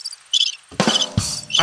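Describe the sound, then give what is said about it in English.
A short burst of crickets chirping from a soundboard effect plays loud, with a few quick high-pitched chirp pulses spaced unevenly and no one talking. “Right here on the inside, it says song, laugh, clap, womp, drum, cash, crickets, blank.”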